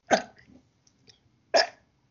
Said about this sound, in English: It was really like, you know, like when you don't have like one good solid burp and they're just kind of like watery, just like meh, but they're still stuck there, so you gotta get them out. That's what that was.